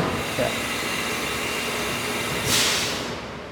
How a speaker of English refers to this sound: The machine looks like a giant metal booth with two small sliding glass doors. Inside, small hoses spray coolant as the machine whittles a gun stock down to the precise size.